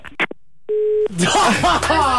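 As a phone call breaks up, a couple of quick clicks sound, then a single steady electronic phone tone for a moment, like a call dropping to a busy signal, before a voice starts up right after.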